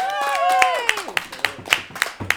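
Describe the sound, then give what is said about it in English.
Audience applause: a sharp, evenly spaced run of claps, roughly four per second, opening under a voiced cheer that slides downward before the clapping carries on alone. “So I think that deserves a round of applause, everyone.”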